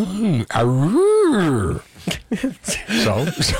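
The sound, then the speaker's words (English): A person imitates a bear's growl with one loud, drawn-out vocal groan that swells and falls, then brief talking follows. “Did you make the wolf sound interested? What was Yeah. That was a bear. That was the bear. That wasn't a wolf.”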